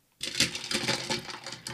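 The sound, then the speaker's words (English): A drink being poured: a bright, splashy stream of liquid starts abruptly and runs steadily for about a second and a half, with a fizzy, crackling texture and no talking. “I'm going to pour this.”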